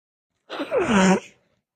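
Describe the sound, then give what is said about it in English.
A single fairly loud sneeze: a sharp intake followed by a voiced, falling burst lasting under a second, alone with no talking around it. “Is that a sneeze?”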